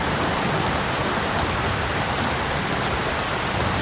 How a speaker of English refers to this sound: After the light and sound show that the heavens put up, came the rain.